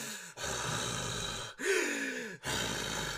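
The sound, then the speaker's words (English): A voice imitates heavy breathing: three long, loud, breathy inhale-exhale cycles separated by brief pauses, with a rasping, slightly voiced quality and no words spoken. “You're just like standing around, like next to his neck, just breathing heavily.”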